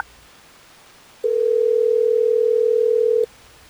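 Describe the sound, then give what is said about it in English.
A single steady electronic ringing tone sounds for about two seconds, clear, like a phone call ringing on the line as a Hot 101.5 radio show calls a listener, with quiet background before and after and no voices. “Well, let's try to get him on the phone so we can figure this out,”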